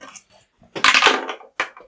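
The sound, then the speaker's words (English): Dice rattle and tumble in a quick clattering burst of clicks, then one last sharp clack as they settle. No one speaks. “Let's raise some dice and talk about these bitches.”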